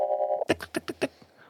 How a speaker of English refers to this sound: It's ringing. Like, it's twittering. Like, you hear the tick, tick, tick, tick, tick.